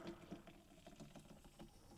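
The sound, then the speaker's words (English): Pepsi from a freshly opened can being poured hard into a glass, a steady fizzing, bubbling patter with small irregular splashes, fairly quiet, with no talking. “Okay, I'm pouring hard.”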